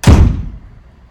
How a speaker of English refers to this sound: Shut the doors.